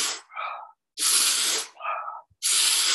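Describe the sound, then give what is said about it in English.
Rapid, forceful Wim Hof style breathing, loud: three hard, rushing exhales alternate with quicker, slightly whistling inhales in a steady rhythm, with no talking. “if we want to create more energy, that's where the Wim Hof breath is”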